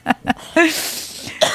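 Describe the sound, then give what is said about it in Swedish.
A couple of short, sharp coughs, followed by a harsher voiced burst and a breathy trailing exhale, then one more quick cough at the end. “Du, hostan där får liksom markera att nu är det här avsnittet som vi redan har spelat in en gång slut för andra gången.”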